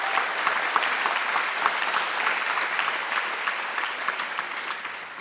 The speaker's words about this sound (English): Please join me in giving a big round of applause for everyone.